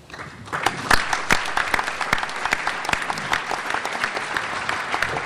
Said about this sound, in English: King Abdullah has made things happen. He continues to make things happen, and I think we need to applaud him for that.